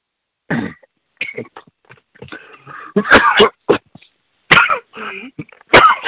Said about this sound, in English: Excuse me. Uh-oh. He's coughing. You need a doctor?